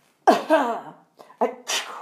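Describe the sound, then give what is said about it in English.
A staged vampire cough into an elbow, demonstrating how to cover the mouth and nose when coughing while sick: one sharp, throaty burst, followed by a few shorter huffs of breath. Fairly loud, with no talking. “You want to use the vampire cough.”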